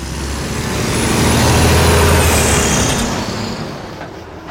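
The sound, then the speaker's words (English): A heavy coal truck rumbles past in the small town of Mount Storm, at a mountain summit, its deep engine roar swelling to a peak and then fading as it drives away, with a hiss of tires on the road. “In the small town of Mount Storm, at the summit of what seemed like the highest mountain, I stopped to take a break and let a coal truck go by”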